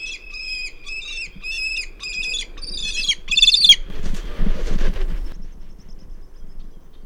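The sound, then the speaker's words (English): Two recently fledged prairie falcons calling while talon locking along canyon walls in late June, about 20 feet away: a run of harsh, rapid, high-pitched squawking calls in quick bursts, then a loud noisy rush of flapping and scuffling as they nearly crash into the ground, before fading to quiet. “On this particular day in late June, as we watched recently fledged prairie falcons flying back and forth along the canyon walls,”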